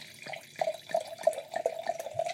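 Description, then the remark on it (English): Moscato wine glugs from a bottle into a glass in a quick, steady series of bubbly pulses, moderately loud, with no one talking. “I'm going to give you this glass and then I'll do a rinse pour on mine.”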